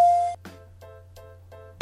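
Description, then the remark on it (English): A bell rings in quick repeated strokes, about three per second, loud at the start and end with softer, ringing tones between, over a steady low hum. No one speaks. “Bell's not fast enough.”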